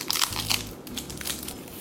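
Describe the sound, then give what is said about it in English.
Dry crinkling and crackling as the papery skin is peeled off a medium-sized sweet onion kept in the fridge, with a few brief crisp bursts and a low steady hum underneath. “But I like to just get off the skin if I can.”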